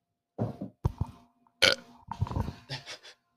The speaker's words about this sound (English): He's on a roll with those burps. They're getting weaker, though.